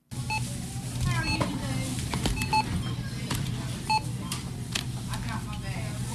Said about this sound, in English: Ward's Supermarket was bustling this holiday season as people in Gainesville were preparing their holiday meals. Registers were beeping, people were laughing, and customers were smiling.